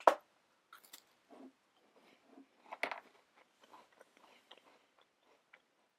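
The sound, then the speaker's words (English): Crunching of a digestive biscuit being eaten: a sharp, loud bite at the start, then a series of softer, irregular chewing crunches with one louder crunch midway, no talking. “That's probably a really bad idea to just hear me crunching.”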